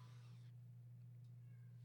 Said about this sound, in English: The hell are you meowing at?